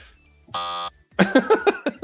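A single harsh game-show buzzer blares for under half a second, a steady rasping tone rich in overtones, then cuts off before people start talking loudly.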